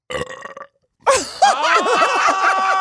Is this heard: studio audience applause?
no